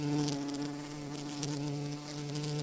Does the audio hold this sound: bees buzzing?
yes